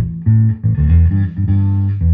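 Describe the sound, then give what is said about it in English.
A clean electric guitar plays a short run of low, sustained notes, each ringing steadily with a faint octave shimmer above it. It is fairly loud, with no one talking. “Let's see what the clean tone, just my clean tone. Let's see what that sounds like.”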